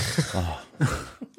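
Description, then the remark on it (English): Two quick, harsh sneezes in succession from a woman, the second slightly stronger, followed by a small sniff or throat noise. They sound slightly muffled, coming from another room where she is playing Xbox with headphones on, with no talking. “in the other room playing Xbox with the headphones on, trying to be as quiet as she can next door. And she's just sneezing.”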